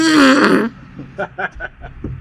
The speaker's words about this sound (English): Truck just farted. So weird. It was a diesel truck.